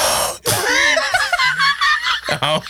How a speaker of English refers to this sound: What's a gasp? How you gasp?